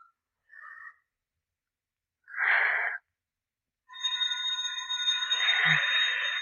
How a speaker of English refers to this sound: That's the bell. How much time between rounds?